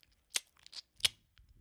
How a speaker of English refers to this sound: Can you chew it away from the mic?